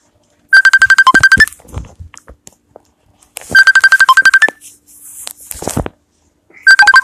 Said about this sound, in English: Of course, somebody calls while we doing the podcast. I know y'all hear the phone ringing. I ain't answering. We'll wait for it to stop.